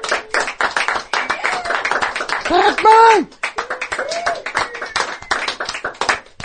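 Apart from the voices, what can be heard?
people clapping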